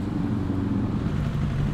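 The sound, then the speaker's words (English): A dark green Suzuki Bandit 1200 GS motorcycle with a rusty chain, its engine rumbling steadily, a low continuous drone with a faint harmonic whine, fairly loud and constant throughout with no talking. “I hear a motorcycle.”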